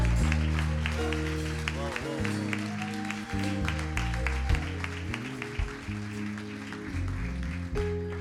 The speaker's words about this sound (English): Clap for them as they are coming.